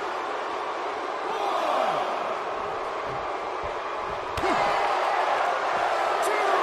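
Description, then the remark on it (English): One sharp, heavy thud as wrestler Bam Bam Bigelow knocks his opponent down onto the ring mat cuts through a constant roar of arena crowd noise, with indistinct voices underneath. “Oh, and Bam Bam knocks him down again.”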